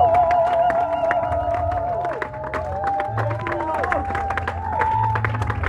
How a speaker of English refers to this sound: Hallelujah. I want you to clap for Jesus. I believe this.